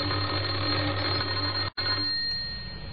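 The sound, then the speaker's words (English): A doorbell of a house in Oxford, pressed by a man, rings with a steady electric buzzing tone, cut off by a brief gap partway through before resuming and gradually fading out. No voices accompany it. “He had a worried expression on his face as he walked up the few steps and pressed the doorbell.”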